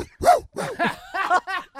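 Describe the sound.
A person imitates a barking dog with a quick run of about six short, yappy woofs, fairly loud, with no other talking.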